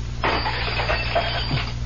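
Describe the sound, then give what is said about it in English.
A glass goblet in a tavern shatters as a hand reaches toward it: a sudden bright crash that trails into scattered tinkling fragments for over a second, heard over a steady low hum with no voices. “I just put my hand toward that goblet and it shattered.”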